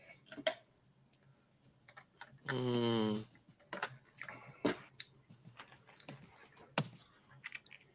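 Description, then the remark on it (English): A button is clicked over and over, giving sharp clicks at an uneven pace, with a brief buzzy tonal burst partway through and no talking. “The king, clicking that button. Hard as hell.”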